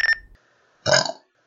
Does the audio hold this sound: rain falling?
no